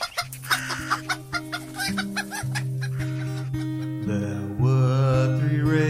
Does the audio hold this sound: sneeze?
no